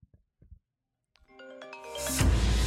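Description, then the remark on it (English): A few soft taps, then a phone ringtone begins as a call is placed to a banker, a bright melodic tone that swells steadily louder and ends in a loud, dense burst of sound, with no one talking. “It's time to go ahead and phone that banker.”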